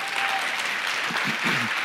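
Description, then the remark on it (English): Steady applause from a crowd at a worship gathering, clapping for the fathers on Father's Day: a dense wash of many hands clapping at an even level, with a few faint murmuring voices showing through near the end. “Yes, let's clap for the dads.”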